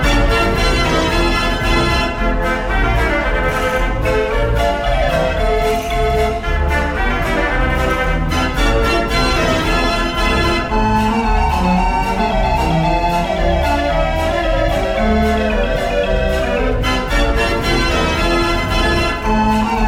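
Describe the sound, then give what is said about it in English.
A mechanical instrument plays the Christmas carol Ding Dong Merrily on High in full, a dense, bright run of tuned notes that carries on steadily and fairly loud from start to finish, with no voices over it. “Ding dong merrily on high, and here it is, playing in full.”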